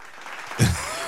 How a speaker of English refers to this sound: It's a round of applause.